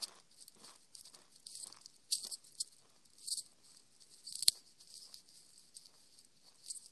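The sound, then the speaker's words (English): Crisp chewing sounds with irregular crunchy bites and wet clicks, fairly quiet overall, with a sharper snap about two-thirds of the way through. “Can you hear me chewing?”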